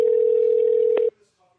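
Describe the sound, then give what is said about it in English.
A steady telephone dial tone before a phone call hums loudly and continuously for about a second, then cuts off abruptly, leaving only faint, quiet noise afterward. “I'm going to be on the phone with Wendell right now.”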